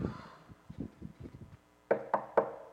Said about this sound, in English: go knock on the door and see if it opens.